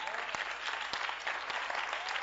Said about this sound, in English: Stand to your feet. They are clapping for the word.